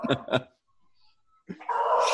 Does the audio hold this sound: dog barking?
yes